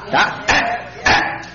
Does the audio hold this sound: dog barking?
yes